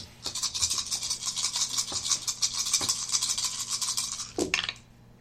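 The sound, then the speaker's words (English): A handful of six dice rattles and clatters steadily for about four seconds in a dense stream of sharp clicks, then a final burst of clacks as they tumble to a stop. “I rolled 6 die.”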